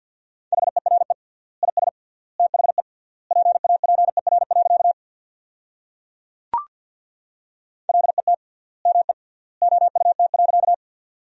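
Very fast Morse code at 50 words per minute with triple word spacing, sending sentences built from the 300 most common words: a steady mid-pitched tone keyed into quick bursts of beeps, with long pauses between words and a single sharp click partway through.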